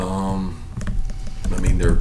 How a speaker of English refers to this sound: Here is Kirby Smart plus the keyboards one more time.